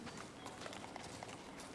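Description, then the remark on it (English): Donkey hooves clip-clopping in a steady, fairly quick rhythm as a man rides past on a donkey with a colt, soft, set against a constant noisy background wash. “He will be riding on a donkey and a colt, and here it is.”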